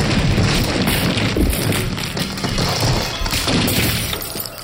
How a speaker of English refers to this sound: I could see the dresser was being steadily pushed into the room. I opened the window as the broken door fell in. I looked back in time to see the dresser tip over.